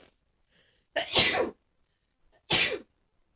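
Two loud sneezes, the first preceded by a quick sharp inhale, then a second explosive sneeze about a second later, with silence around them and no talking.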